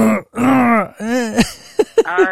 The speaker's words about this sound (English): Because like, okay, always coughing or clearing my throat.